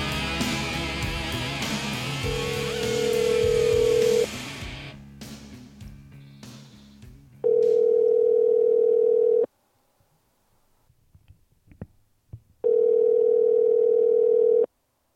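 Over a music bed, a steady telephone tone sounds, then quick dialing clicks as someone places a phone call, followed by two loud, even ringback tones about two seconds each with a quiet pause between them.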